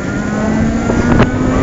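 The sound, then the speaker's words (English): An electric motorbike accelerates very quickly, its thin motor whine holding steady over constant rushing wind and road noise, fairly loud, with no talking. “Can you hear it? Just a little... That's it. The acceleration's very good, actually. Moving along very quickly.”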